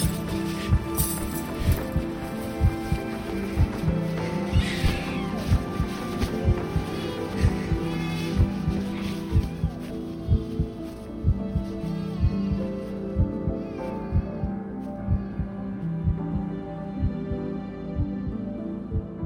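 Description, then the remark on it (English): A heavy heartbeat thuds steadily, its low, regular beats pounding throughout over a droning, humming musical background, with no voices. “Blood pounding in my head, I take the baby in my arms and pull him out of the wrecked car.”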